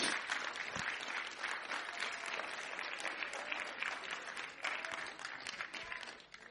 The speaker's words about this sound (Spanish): Denle un aplauso al Señor, hermanos, porque eso es lo que Dios hace.